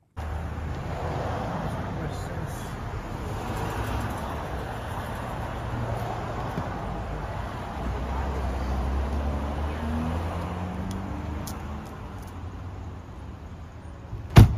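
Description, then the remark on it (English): A steady rumble of car and road noise runs throughout, then a man slams a car door shut in front of paparazzi, a single sharp, loud slam right at the very end. “Yeah, he just slammed the door closed.”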